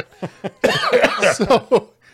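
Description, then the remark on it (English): A voice imitates the harsh hacking cough of someone who has smoked for 40 years: two short rasps, then a rough, raspy fit of rapid coughs and wheezy gasps, loud, fading into a brief quiet breath. “Didn't wake up hawking loogies up and coughing and dying. And you don't sound like you've been smoking for 40 years like this.”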